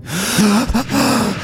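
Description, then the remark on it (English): A deep, fearful gasp from a man waking up, a loud breathy intake of air with a strained, voiced edge that wavers for about a second and a half. “I awoke that day with a deep, fearful gasp.”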